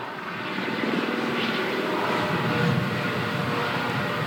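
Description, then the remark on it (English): A helicopter passes overhead with a steady, throbbing rotor drone that swells slightly and holds loud throughout, with no voices over it. “I'm just going to let that helicopter pass.”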